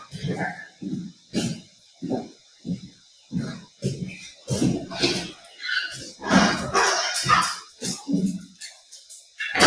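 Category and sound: animal, dog barking and whimpering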